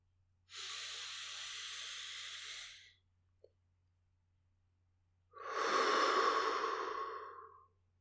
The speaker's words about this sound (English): Now maintaining that slow, calm breathing, we're going to scan down our bodies, just acknowledging and then releasing any points of tension.